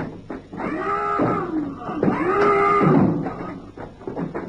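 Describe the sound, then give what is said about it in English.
A ship's alarm blares in two long, loud, brassy blasts, each a droning horn-like tone that bends slightly in pitch, separated by a brief break, sounded aboard a ship after a torpedo is sighted off the port bow. “Never mind the phone call. Sound the alarm.”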